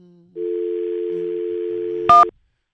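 A steady telephone dial tone hums for about two seconds, then a short burst of a dialing tone cuts in before the line goes quiet. No voices are heard.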